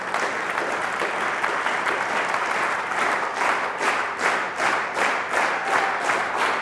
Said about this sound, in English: Now, I want you just to clap normally, and when I say clap together, which I mean synchronously, just clap together. So when I'll tell you, just start clapping. Okay, together.